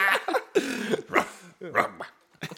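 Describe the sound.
A person makes a series of rough, throaty growling noises, several short bursts imitating an animal, with brief pauses between them.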